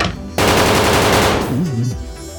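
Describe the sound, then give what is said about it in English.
A rapid burst of gunfire from a shooter in a tower erupts suddenly and loudly, shots cracking in quick succession for about a second before trailing off into a lower rumble. “All right, old boy in the tower is just going to keep on a shooting.”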